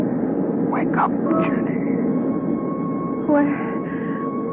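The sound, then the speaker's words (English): A steady, loud airplane cabin drone of engine noise fills the whole stretch, with brief faint tones and muffled voices surfacing over it. “Where am I? A plane?”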